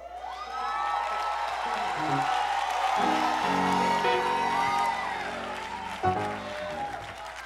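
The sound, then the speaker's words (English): An audience claps and cheers steadily for several seconds, a dense wash of applause with scattered whoops and shouts rising over it before the noise briefly swells near the end. “I pray to God that you're clapping because of his ability to keep a thing.”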